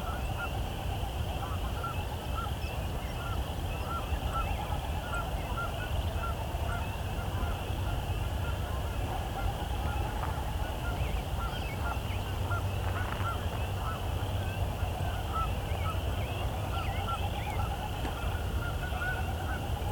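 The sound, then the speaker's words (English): A large flock of Canada geese honking steadily and overlapping, a dense outdoor chorus with no speech, continuous and fairly loud throughout. “Got a lot of Canada geese.”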